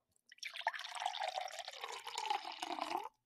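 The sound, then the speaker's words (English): Stella Rosa Stella Peach wine, a low-alcohol peach wine, pours steadily into a glass for about three seconds, a continuous gurgling splash whose pitch rises slightly as the glass fills, then stops abruptly. “So we're going to go ahead and pour me a little something.”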